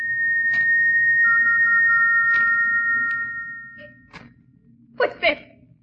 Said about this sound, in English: What's that? What's that whistle? Who is it? It's come again. That whistle.